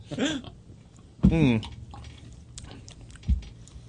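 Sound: sipping beer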